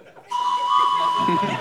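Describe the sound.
A whistle is blown in one long, steady, high-pitched blast that starts abruptly and holds loud for over a second, with faint voices murmuring underneath near the end.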